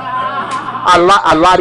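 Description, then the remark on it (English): A voice imitates a car wheel shaking while driving on 287: a sustained vocal tone breaks into about four loud, rhythmic, wobbling bursts, strong, with no other sounds around it. “I came in, the wheel was shaking, and I'm on 287, and the wheel is doing this.”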